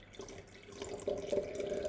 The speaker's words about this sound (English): It's very much dark, cassis, black currant-y, berried colour, which is just beautiful and very, very duro. So I'm just pouring a bit in the glass now.